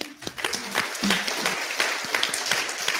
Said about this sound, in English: Give her a clap.